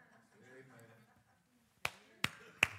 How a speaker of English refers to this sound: Y'all can quit clapping.